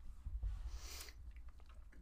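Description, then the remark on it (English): Two people chewing close to the microphone, with moist, crunchy clicks and soft low thumps, plus a brief hissy rustle partway through. No one speaks. “How close is he to the mic? You're both chewing.”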